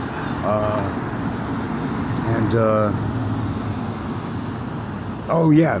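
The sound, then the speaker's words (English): A steady, loud roar of town street traffic, averaging about 85 to 90 decibels in the daytime in the loudest part of town, fills the whole recording, with a few brief, indistinct voice-like sounds rising over the constant rumble. “The average decibel is about 85, 90 in the daytime. This is the loudest part of town right now.”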